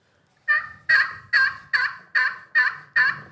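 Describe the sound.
A turkey call sounds a run of seven hen yelps, loud and evenly paced, each a sharp raspy note that drops off quickly, with no voices.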